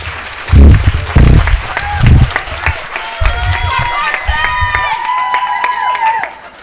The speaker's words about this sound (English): Brought his own cheering section. Yeah. I didn't have that cheering section.